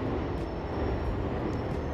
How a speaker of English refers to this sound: I'm outside, I'm trying to record, but I'm gonna have to go in. It's a nice day out, but I think with the other noises, it's not gonna work out here. I'm gonna wait till this plane go by.